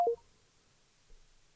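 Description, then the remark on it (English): A single short keypad tone beeps once at the very start, like one digit pressed as a phone number is dialed to make a call, followed by near silence with a faint soft bump later. “So, let's call this dude right here. Let's see if he pick up the phone.”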